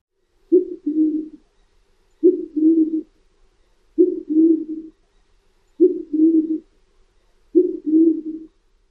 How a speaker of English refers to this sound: So one more time, here's the cooing and call of the band-tailed pigeon.